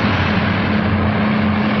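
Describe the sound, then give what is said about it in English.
A line of police cars led by motorcycles drives past along the bottom of a hill, a steady, loud drone with a continuous low engine rumble that holds an even level throughout, with no voices. “Later, a line of police cars drives along the bottom of a hill, led by motorcycles.”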